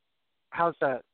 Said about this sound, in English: Okay, I'm getting the echo again.